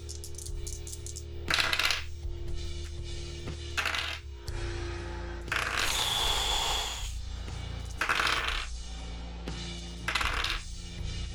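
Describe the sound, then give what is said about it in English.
A handful of many dice clatter and tumble across a hard table in several separate bursts, each rattling roll loud, with brief pauses of quiet between throws. “So many dice.”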